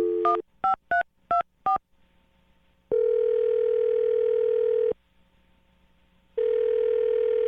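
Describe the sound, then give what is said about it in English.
A quick run of five touch-tone keypad beeps as a phone number is dialed to make a call, then a steady, droning phone tone that holds for about two seconds, drops out briefly, and returns. No one speaks. “Okay, I'm going to dial a number right now.”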